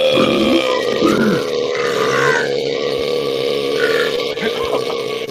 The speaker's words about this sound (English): I burped too hard, it almost came out.